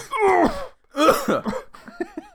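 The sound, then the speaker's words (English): Loud bursts of raspy coughing with a strained, groaning voice, a long fit, a brief pause, then another round tailing off into smaller, weaker coughs and wheezy breaths. “Some of that coughing was genuine.”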